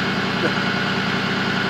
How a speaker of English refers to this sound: I'm sorry, there's literally a tow truck. I'll show you. There's a tow truck right next to me here. Right there. See?